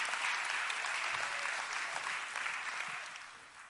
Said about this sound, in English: Come on, clap on again. We need to celebrate the fact that God is near us.